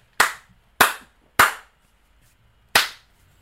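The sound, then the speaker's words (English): Sharp, loud slap sound effects ring out alone: three evenly spaced smacks in quick succession, then a short pause before a fourth crack, each with a brief bright decay. “You know what that was? That was a three slaps.”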